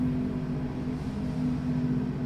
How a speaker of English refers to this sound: Another train is going by. God damn it. This one I can actually hear.